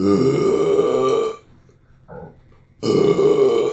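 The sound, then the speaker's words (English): Two long, loud burps with a deep rumbling tone, separated by a brief pause and a faint little gulp in between; no one speaks. “Yeah, it's just a burp.”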